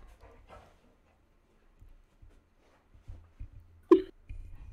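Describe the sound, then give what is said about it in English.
A dog gives one sharp, loud bark near the end, after a few faint whimpers and soft low thumps. “Just so you know, I'm following for the dog.”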